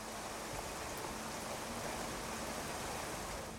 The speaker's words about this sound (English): It was pouring rain outside. Crap, I have to walk home in this, I moaned.